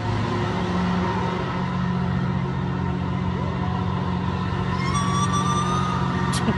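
A whale call: long, eerie tonal moans and rising glides over a constant low rumble of background noise. Near the end, higher sweeping tones appear. Nobody speaks.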